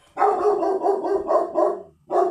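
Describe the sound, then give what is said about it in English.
Dogs barking in the background in a rapid, continuous string of loud barks for about two seconds, a brief pause, then another bark burst. No talking. “We got some dogs barking in the background.”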